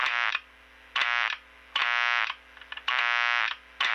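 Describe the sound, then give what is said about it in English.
A harsh electrical buzz from a dimmed light bulb, picked up by a microphone held up to the bulb with the dimmer switched on, chopped into four loud, evenly spaced bursts of about half a second each with brief silences between, with no voices. “So you can make a doorknob buzzer just by putting the microphone up to the bulb and then putting on the dimmer.”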